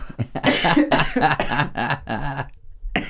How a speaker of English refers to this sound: is coughing in the background